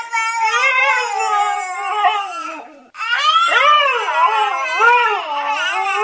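A husky howls in long, wavering, sliding notes while a baby wails along in imitation, the two voices trading off and overlapping continuously, loud, with only a brief pause midway.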